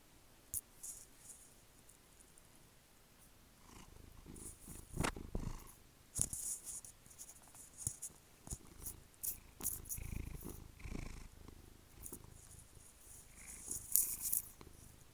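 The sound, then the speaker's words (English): A cat purrs steadily, a low continuous rumble with soft rhythmic pulses, joined by occasional light clicks and rustles. “My cat decided to make a special appearance.”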